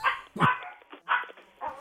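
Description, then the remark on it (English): A dog barks four times in quick, uneven succession, sharp, with brief pauses between the barks and no talking over them. “Dogs are going to get you.”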